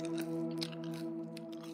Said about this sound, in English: I took them and ripped them open, shaking out a few into my hand before popping them into my mouth and chewing.